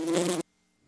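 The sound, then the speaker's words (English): A loud bee buzz drones for under half a second and then cuts off abruptly, leaving near silence with only a faint rustle at the end. “Wait, where's the bee?”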